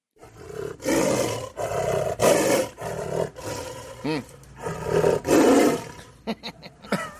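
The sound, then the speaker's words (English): A tiger roars repeatedly in deep, rasping bursts, loud, with a few short grunting calls near the end and no talking. “No, that's just a tiger.”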